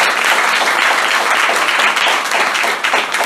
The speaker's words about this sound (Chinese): 请给予他们很大的掌声。